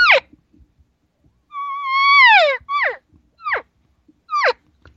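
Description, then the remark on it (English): Imitated elk cow social calls: five high, nasal, mewing calls that slide downward in pitch, one long drawn-out call followed by several short chirps, each separated by a pause, with no talking. “So when you learn, if you're going to practice a social cow sound, you're going to go like this.”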